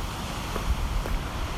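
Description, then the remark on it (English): Aspen leaves flutter in a steady wind in the sun, a continuous soft rustling hiss with gusty low rumbles of wind buffeting the microphone, and no voices. “Their little paddles make such a nice little chorus as they do.”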